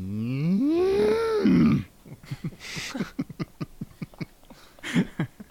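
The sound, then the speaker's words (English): A person does a long, loud imitation of a cow's moo, rising and sliding in pitch, followed by a series of short rhythmic vocal grunts or clicks. “People may think that's such a good cow noise.”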